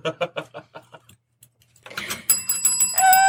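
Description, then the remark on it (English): A hand bell rings out, shaken rapidly so bright, sustained metallic tones overlap and build. Before it, a quick series of rhythmic rattling shakes is heard. “Yay, I get to ring my bell.”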